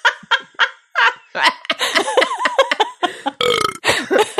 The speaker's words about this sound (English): here's when for a second, I was confused who it was, and then I remember the beer burps, and I was like, what if it was me, and I gotta get away just in case. I didn't want to offend you. It was turns not out a beer it was burp.